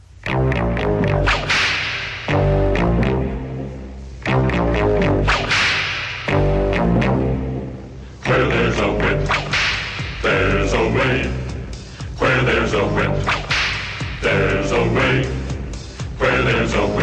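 Sharp whip cracks snap at a steady rhythm, roughly every two seconds, over a loud, full band and a chorus of singing voices marching along.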